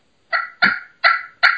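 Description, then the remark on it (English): A Primos Crystal slate pot call for turkeys, played to give four raspy, rolling purr notes in a quick, uneven rhythm, each fading briefly before the next. No one speaks. “I like a slate because you can purr on it.”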